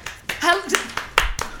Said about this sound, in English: Yes, clap. You came in looking like a celebrity. Clap.